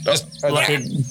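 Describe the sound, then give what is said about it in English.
Bright bursts of bird chirping in two quick clusters as the birds are fed seed, with a voice talking underneath and a steady low hum in the background. “It starts to like, tries to get its beak in like the opening of your wet bag. Stop. Bad. That's a bad bird.”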